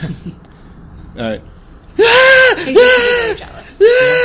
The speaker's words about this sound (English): And then you have, two screaming heiresses. We've just been screaming for like the last 5 minutes.